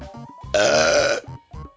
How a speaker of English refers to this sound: Pardon me? For different types of burps?